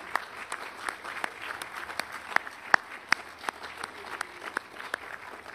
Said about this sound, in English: I will just say this is the kind of service where we get to clap a little bit. I don't know about you, but I think I want to clap after hearing all those.